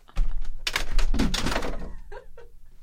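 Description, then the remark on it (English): A heavy thud as someone falls to the floor, followed by a second or two of bumping and scuffling impacts, then a couple of faint knocks as things settle. “You fell down?”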